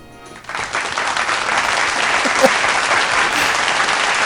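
Audience applause starts abruptly after a brief quiet moment and continues as steady, dense clapping for about four seconds, loud and sustained without fading.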